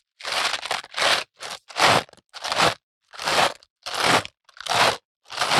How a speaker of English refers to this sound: Really effective footsteps.